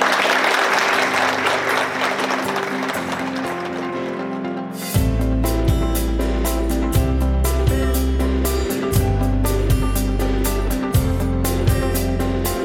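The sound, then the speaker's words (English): Dense, steady applause from an audience for two participants at the close of an event fills the first few seconds, then fades as upbeat music with a thumping bass line and crisp percussion takes over. “Please give both our participants a hearty round of applause.”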